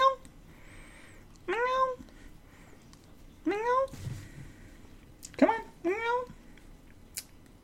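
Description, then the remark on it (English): A pet cat meows four times in short, rising-and-falling calls spaced a second or two apart, clear against a quiet background. “Did you hear her go? Come here. Say hi.”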